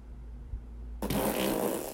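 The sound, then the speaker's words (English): After a moment of near silence, a loud, buzzy whoopee cushion fart bursts out and sputters on for about a second, with no talking, during a 40th birthday weekend celebration. “We've been celebrating with whoopee cushions, and every time there's a whoopee cushion fart, happy 40th birthday weekend!”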